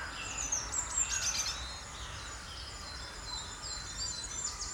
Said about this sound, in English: There's crows mixed with herons, mixed with wrens, mixed with cranes. The crows are really waking up now. It's like a cauldron of crows.